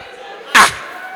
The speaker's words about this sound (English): But if he was an African, the next thing the Bible would have said was that, and his mother slapped him. And that slap will arrange your thoughts.